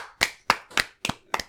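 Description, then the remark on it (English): Five sharp hand claps in a steady, evenly spaced rhythm, crisp, with brief silence between each and no voices, made by a person clapping repeatedly to sync the audio of a recording. “He just wants to sync the audio a lot of times in a row.”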